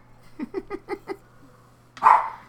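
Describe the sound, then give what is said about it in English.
A dog barks outside in Spokane in a quick run of five short, rhythmic yaps, then lets out one louder, harsher bark after a brief pause, over a low steady hum. “Oh, and so the dogs are going porch? Outside.”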